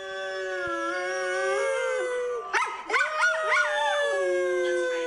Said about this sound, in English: But so what I realized was that my dog has he howls, right? But I've never heard him howl before. All dogs howl. But turns out if I start howling, he will howl with me.